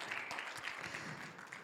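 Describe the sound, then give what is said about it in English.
An audience at a morning worship service applauds as praise to God, many hands clapping at once in a dense, sustained wash of sound with no clear rhythm, moderately loud throughout. “Come on, as you can be seated, as you give God another hand clap of praise this morning.”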